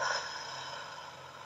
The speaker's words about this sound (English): Put one hand on your heart, one hand on your head, and take a deep breath in through your nose, out through your mouth like through a straw.